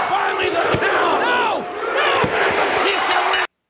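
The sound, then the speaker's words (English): A large arena crowd at a wrestling match between Batista and Edge roars and cheers continuously, with wavering shouts and chants rising over a dense wall of noise and occasional sharp thuds or slams cutting through. “And look at the crowd reaction, man.”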